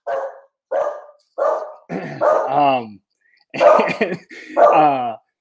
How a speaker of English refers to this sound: Sorry, I'm distracted by my dog yelping in the background.